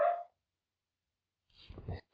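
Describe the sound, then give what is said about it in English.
A dog gives one short, sharp bark, followed by a pause and then a brief rougher, lower burst of noise. “a brief pause there, Cal, as I abused an animal. Abused my dog.”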